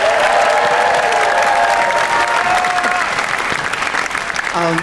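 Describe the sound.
Sustained audience applause, a dense steady wash of clapping with some whoops and cheering voices mixed in, loud throughout and tapering slightly near the end.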